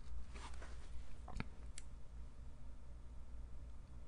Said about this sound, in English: Am I shuffling the papers enough? To be fair, I should let you guys know that I have employed a paper shuffling team to make these noises, because I just felt like I wasn't able to make the amount of paper noises that a podcast should have.